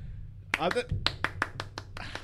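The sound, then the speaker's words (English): A brief vocal sound, then a run of about seven sharp hand claps close to the microphone, steady and fairly quick, each one crisp and loud against a quiet low hum. “This might be the third episode in a row where you've just given that fucking that clapping.”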